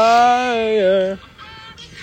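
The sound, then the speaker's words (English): A rooster crowing sound effect: a rooster crows once, loud, in a long strained call that dips in pitch at the end, followed by softer, shorter calls. “I'm just going to, while you're going on, put a little of this in the background. Rooster?”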